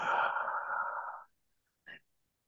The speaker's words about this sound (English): Let's breathe in deeply. And the Bible, spirit means breath. Let us go to our spirit, breathing in 5 seconds. And breathing out.